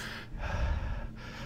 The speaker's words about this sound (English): All I'm doing is just like breathing heavily. Maybe that's somebody's ASMR trigger.